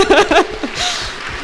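A few short chuckles give way to a soft, steady patter of audience clapping that fills the last second at moderate loudness, with no speech over it.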